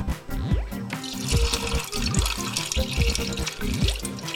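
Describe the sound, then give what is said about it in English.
Water sloshes and pours out steadily, with repeated swishing surges and a continuous splashing stream as rinse water is swished and drained off beans in a pot, rinsing them clean for cholent. No one speaks. “Just give a little swish, pour the water out.”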